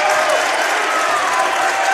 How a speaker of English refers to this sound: Cardinals getting a nice round of applause from their bench for the defense that they're playing.